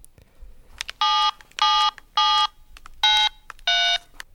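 Telephone dialing tones of an outgoing phone call: five short electronic beeps in a steady, evenly spaced sequence, loud, with no voices over them.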